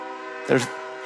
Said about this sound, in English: And the train is like, an amen.